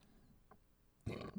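A short, low burp erupts after a quiet stretch, rough and throaty, lasting under half a second with a small trailing gulp at the end.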